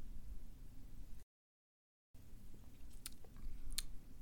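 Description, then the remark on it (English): Someone takes a quiet sip of a drink, with soft mouth and swallowing noises, a few small clicks, and a brief dead-silent gap partway through. No one speaks. “Let me get a sip.”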